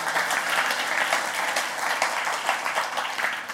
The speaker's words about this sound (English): We give all of our guests a warm welcome this morning. Just a hand clap.